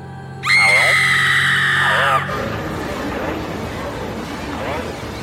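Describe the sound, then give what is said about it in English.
A woman's loud, sustained scream from her bedroom rings out for nearly two seconds, wavering in pitch, then cuts off abruptly, leaving a murky background with faint voices. “heard her suddenly screaming from her bedroom.”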